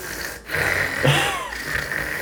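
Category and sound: vocal imitation, imitated heavy snorting breathing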